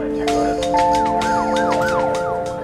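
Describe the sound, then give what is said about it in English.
Emergency vehicle sirens wail in repeated rising-and-falling sweeps in a Kansas City neighborhood at nearly 3 a.m. on a Sunday, loud, layered over steady tones and a busy background hum with no one speaking. “Sirens tore into the silence of a Kansas City neighborhood early the morning of September 9th.”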